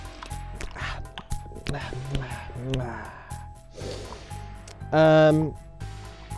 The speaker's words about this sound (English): Perfect time to do a couple of swallows and clear my throat. Mm-hmm. Just give me the gross, swishy sound of waters up inside you.